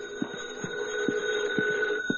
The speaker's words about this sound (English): In the living room of an attractive home, a well-dressed middle-aged woman rises from her chair to answer the phone.